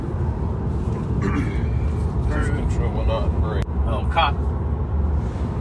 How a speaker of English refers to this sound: Didn't notice it was a cop car. Yeah, I didn't notice it was a police. Yeah. Oh, man. It would have been cool if the car that came by had the lights on it.